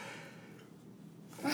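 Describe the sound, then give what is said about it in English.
A soft, breathy intake of air builds for a moment, then a sudden, harsh burst of a sneeze erupts right at the end, with no talking. “Oh my gosh, sneeze just came through.”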